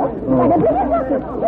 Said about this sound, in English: There comes a crowd from the main house.